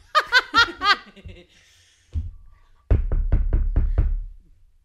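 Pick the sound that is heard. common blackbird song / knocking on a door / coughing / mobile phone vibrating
knocking on a door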